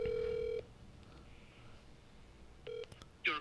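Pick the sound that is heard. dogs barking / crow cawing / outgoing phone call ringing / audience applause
outgoing phone call ringing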